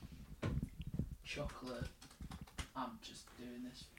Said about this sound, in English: Wow, he's a powerful typer, isn't he? He's not gentle with his keyboard. He likes to hit it.